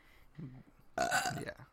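An involuntary burp erupts abruptly and loudly, rumbling for about half a second, preceded by a softer, low guttural gulp; no one speaks.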